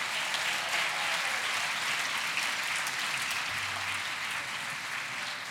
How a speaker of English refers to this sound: This is our freshman band, and this is their first LaSalle Christmas concert. So give these guys another round of applause.